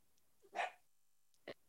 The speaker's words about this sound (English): Quiet. These damn dogs.